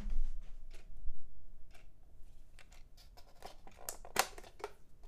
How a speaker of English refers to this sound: There is a clock in this room, a very loud clock. Is that going to be a distraction for everyone involved? It's going to be a distraction for me. I'm going to go turn off this clock real quick. Ugh, give me a second. Ugh, it's so loud.